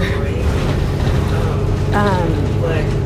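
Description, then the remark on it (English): Steady, loud low-pitched engine rumble fills the inside of a moving bus, droning continuously throughout, with a brief indistinct voice rising over it partway through. “Okay, so now I'm on the bus, but I don't know if you can hear me.”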